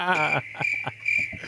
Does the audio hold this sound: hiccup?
no